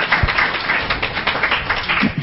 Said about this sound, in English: I think he deserves a round of applause for that answer. Don't we? Don't we agree?